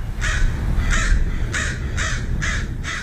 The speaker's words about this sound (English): It's Thursday morning and the village is quiet. So quiet, you can hear the signature calls of crows nesting in the derelict buildings of the town.